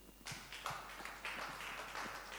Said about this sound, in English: Only a few disciples are clapping here. The Christians are just looking at me.